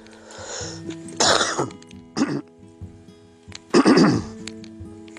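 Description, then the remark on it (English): A few harsh, raspy coughs from one person, three bursts spaced over a few seconds with a rough throaty edge, with no talking around them. “Sorry, I just coughed there.”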